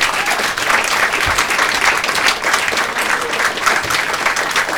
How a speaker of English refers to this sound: Do give him a massive round of applause